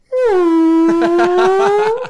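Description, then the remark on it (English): A person mimics a whale call with one long, loud moaning tone that drops in pitch, holds low and steady, then rises slightly at the end, taking on a pulsing warble partway through. “You gotta get into the water and you just do a whale call.”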